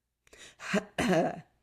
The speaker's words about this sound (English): I have a cough coming up, so give me 2 seconds.